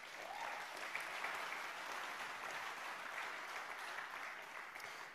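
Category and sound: crowd, audience clapping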